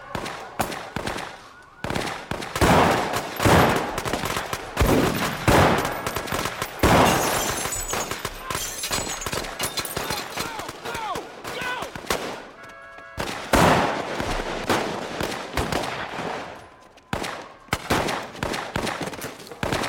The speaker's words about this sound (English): But I have a scene. I have a clip of that shootout. Let's bang out.